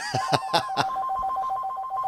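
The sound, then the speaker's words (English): A telephone rings with rapid, bright bell-like bursts, four quick strikes followed by a sustained electronic tone, clear with no talking. “It is pretty creepy, right, when we're talking about this, that the phone rings.”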